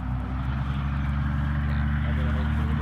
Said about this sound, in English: Damn kids and their damn trucks.